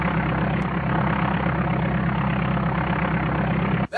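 A biplane flying upside down: its propeller engine drones steadily and loudly, with a rough, low rumble that holds constant before cutting off abruptly at the end. No voices are present.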